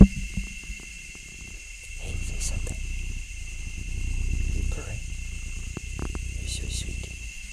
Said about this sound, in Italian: In più stasera c'è la mia gatta sul mio petto che sta facendo le fusa mentre io le tengo la zampina in mano, per cui è proprio un momento speciale. Adesso vi faccio sentire anche lei.